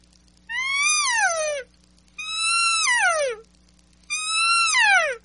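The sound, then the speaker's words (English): Three loud, reedy mewing notes blown on the reed of an elk call, with the lips moving from closed to more open, each about a second long, rising slightly then sliding downward in pitch, separated by short pauses with no talking. “And I was literally blowing on that reed the exact same.”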